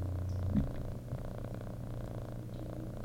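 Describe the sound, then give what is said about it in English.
A cat purrs steadily, a low continuous rumbling drone with a soft pulsing rhythm, heard alone without any talking. “can you hear my cat purring?”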